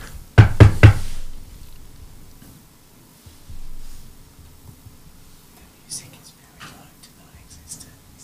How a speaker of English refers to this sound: The door knocks.